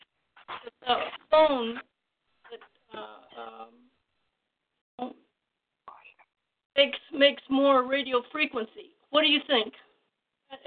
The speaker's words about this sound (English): You were cutting in and out.